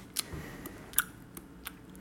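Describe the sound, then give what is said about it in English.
Wet mouth smacks and clicks mimic someone chewing gum, five or six short snaps spaced irregularly over quiet background, with no talking. “Miming chewing on gum. This is what this sound is.”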